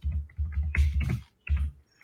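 Quick keyboard typing in short clattering bursts with brief pauses between them, the keystrokes thumping against a hard surface, as someone looks up a filmography. No one speaks.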